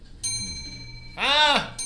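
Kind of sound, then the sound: household object, clock chiming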